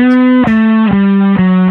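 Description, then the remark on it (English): A heavily distorted bass guitar plays a short riff of four sustained, buzzing notes, each change marked by a sharp pick attack, loud with no voices. “But with some bass distortion and”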